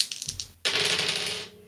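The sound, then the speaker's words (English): Dice rattle on a tabletop during a damage roll: a few quick clicks, then a sharper clatter that turns into a busy rolling rattle for about a second before settling. No voices. “Rolled pretty low on that.”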